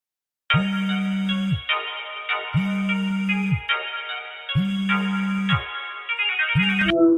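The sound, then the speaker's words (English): A phone line rings with a steady electronic ringtone, four pulsing rings in an even rhythm, fairly loud, with no voices, as a phone line is opened for a caller. “Let me try to open up this phone line, and here we go.”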